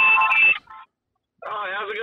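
Tinny audio feedback on a caller's phone line during a live call-in: a shrill, sustained tone that cuts out for a moment, then returns as a wavering, warbling squeal, fairly loud with no one talking over it.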